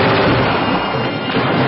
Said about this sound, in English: The land where bullets come screaming out of nowhere.